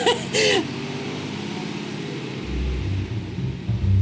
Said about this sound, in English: I'm sorry, there's a garbage truck going by. It's gonna be loud for a second here.